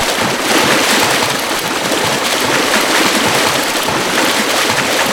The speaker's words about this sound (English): Hear that? That's what I'm listening for, the waterfall.